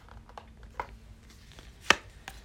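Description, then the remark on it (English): A deck of cards being shuffled again by hand, heard as a few soft, scattered flicks and one sharper snap of cards, with no one talking. “And I'm shuffling again.”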